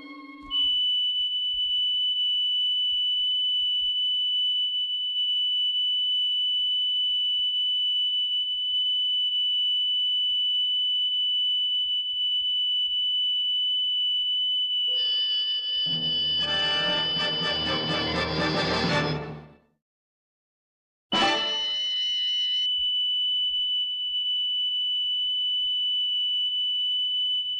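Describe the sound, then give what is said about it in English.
A piercing, extremely high sung note, two octaves above high C, held steady and pure for a long stretch, broken by a harsh noisy burst and a moment of silence before the shrill tone returns. “Well, I've never tried my note 2 octaves above high C on a woman before.”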